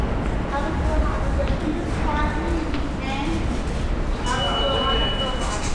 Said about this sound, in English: So we went to the subway.